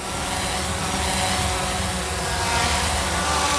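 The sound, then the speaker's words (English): A dense, steady mechanical buzz of many delivery drones whirring at once, loud and unbroken with a low humming layer underneath, and no voices. “Imagine a crowded city with hundreds of delivery drones buzzing by at all times.”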